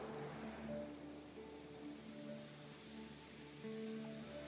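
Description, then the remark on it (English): Soft ocean waves of crystal blue water wash back and forth in a steady, gentle hiss that swells slightly now and then, with a quiet sustained musical drone underneath and no one speaking. “And before you, you hear the crystal blue water flowing back and forth.”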